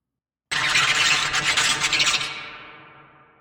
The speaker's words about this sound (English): Whale clicks, but not from me.